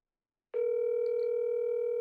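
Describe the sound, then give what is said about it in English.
After a moment of silence, a steady electronic telephone tone switches on and holds at an even, moderately loud level, like the ringback of an outgoing call, here a call to a sister branch in Alberta, Canada, with no voices. “Gonna call up the first branch here.”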